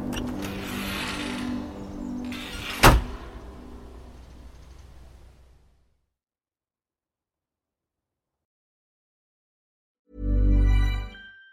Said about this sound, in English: That's all good, but we'd like to thank you much for joining us tonight on Cabin Country, and we'll let the embers burn down, and we'll let the screen door slam shut. We'll see you next week.